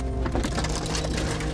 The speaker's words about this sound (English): The trees overhanging the bush road are heavy with ice, and they slap the truck as we drive by.